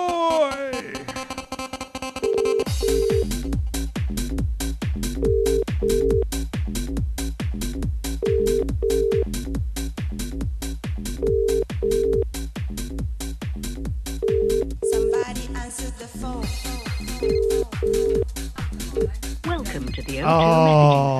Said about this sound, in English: Right, should we call him, …? Should we call him? Call him. Somebody answer the phone.